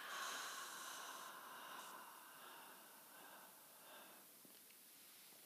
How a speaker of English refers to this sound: Breathing out through the mouth for six, counting down from six. Taking another nice breath in, seeing if you can really feel all the way into the belly. And a nice slow exhale for six. Breathing in for four. Breathing out for six.